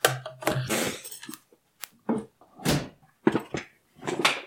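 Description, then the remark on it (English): A door is opened to let the dog out, with a series of clunks, rattles and a brief creak, followed by a few more knocks as it settles. No one speaks. “I had to let the dog out.”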